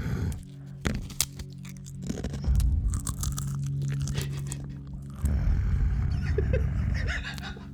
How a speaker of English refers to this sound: It's a pretty good sound. It's a nice snarl. Evidently, when I eat tortilla chips, I become a wolf man of some sort.